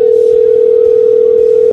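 A steady, unbroken telephone dial tone hums loudly and evenly for under two seconds while a call is placed live on air, then cuts off abruptly, with no voices over it.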